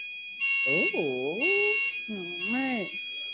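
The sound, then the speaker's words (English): A building alarm sounds in steady repeated high-pitched pulses, about three bursts roughly a second apart, while voices talk loudly over it. “the alarm didn't want you to say your age, for real.”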